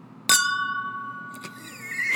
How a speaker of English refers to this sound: Dude, I filled that glass so much that it sounded like a ding.